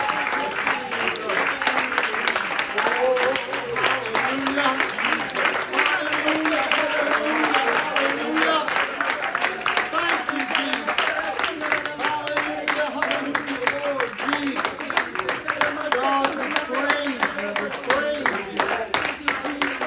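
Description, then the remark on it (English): An audience claps hands together in praise of God in sustained, dense applause for the whole stretch, loud, with voices calling out faintly beneath the clapping. “Why don't we all just give Him a hand clap of praise, God?”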